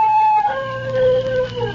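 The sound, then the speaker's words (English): A dog on a leash lets out one long, loud howl, holding a wavering tone for nearly two seconds before its pitch sags lower toward the end. Nobody speaks. “Hey, Captain, he howled.”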